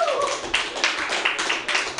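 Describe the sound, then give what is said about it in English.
A comedy show audience at Joke Workshop on MutinyRadio.fm claps steadily for the comedians in the room in a dense, noisy patter, with brief whoops or cheers rising over the applause near the start. “Let's give it up for all the comedians in the room.”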